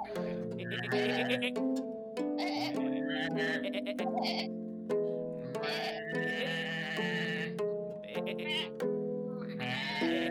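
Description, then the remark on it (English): A flock of sheep at pasture bleats almost nonstop, wavering calls overlapping one another, loud, with no pauses between the cries. “He was a shepherd, watching over his sheep while at pasture.”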